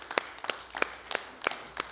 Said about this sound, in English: Come on, let's give the Lord one more hand clap if you wouldn't mind.